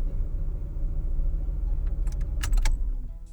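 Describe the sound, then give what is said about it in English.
A car engine trying to start, a heavy low rumble churning steadily, with a brief bright jangle of keys partway through. No one speaks. “I thought you were going to say the car wouldn't start because it was that unreliable Ferrari”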